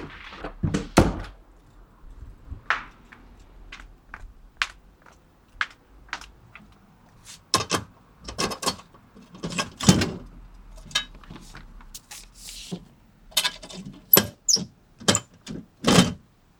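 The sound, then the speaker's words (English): A letter with a hand-drawn flower being put into a mailbox: an irregular run of sharp clicks, rattles and dull thunks from the lid and handling, some louder than others, with no one talking. “Now putting in this in the mailbox.”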